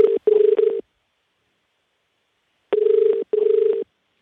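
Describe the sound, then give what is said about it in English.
A phone ringing on the line as a call is placed, a steady buzzing double ring heard twice with a long pause between, fairly loud, with no voices. “This is the anticipation of her answering the phone right now.”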